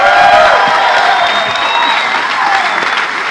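An audience claps steadily, a dense, loud wash of applause that holds at an even level for a few seconds, with faint whistling or cheering tones drifting above it.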